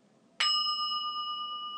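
A single bright bell is struck once to begin a new moon meditation, its clear metallic ring sustaining and slowly fading over a soft low background hum, fairly loud.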